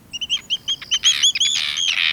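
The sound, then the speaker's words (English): Arctic terns calling: a quick run of sharp, high-pitched notes that builds into a dense, overlapping chatter, loud, with no voices. “In September, Arctic terns fly south over the ocean from Alaska all the way to Antarctica.”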